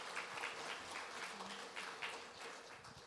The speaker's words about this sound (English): I just want to go ahead and just give him, I don't think he's in the room, but go ahead and give him a hand clap for the incredible work that they do.